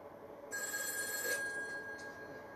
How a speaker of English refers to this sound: Uh-oh. The red phone's ringing. Turn the fucking music off. It's always a bad thing when the red phone rings.